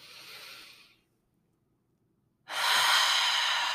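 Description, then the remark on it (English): A slow, soft inhale fades out, then after a pause of silence a louder, airy exhale rushes out, deep grounding breaths taken during a guided breathing exercise, with no talking. “So, with that, let's take a few grounding breaths. Breathing in whatever might be alive in your body right now.”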